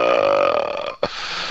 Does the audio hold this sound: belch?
yes